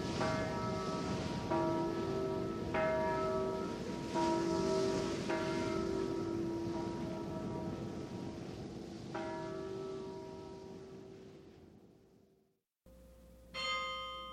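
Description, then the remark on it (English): Church bells of Dordrecht chime in a steady, overlapping sequence, their bright ringing tones sustaining against a hissy background before fading out, followed by a brief final tone. “These are the most joyous bells in Europe.”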